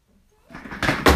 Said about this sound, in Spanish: Oh, demonio, tire la silla. Ah, oh, maldición, ¿por qué siempre la ponen ahí?